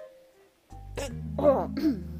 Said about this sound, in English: I got a burp. Wait, it's back.